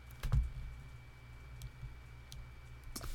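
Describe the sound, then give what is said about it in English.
Scattered keystrokes tap on a computer keyboard, a few quick clicks spaced irregularly over a low background hum, quiet, with no one speaking. “But as I sit here typing, one by one, my motion lights in the backyard keep going on.”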